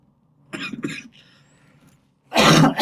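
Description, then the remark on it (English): A person coughing into a microphone: two quick coughs in succession, then a brief pause and one louder, harsher cough near the end. No one speaks. “See my cough in there.”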